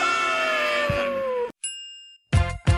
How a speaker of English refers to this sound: Let's answer your questions. Bell time. The mail's here.